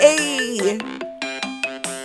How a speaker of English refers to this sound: Wait. Ooh, new ringtone.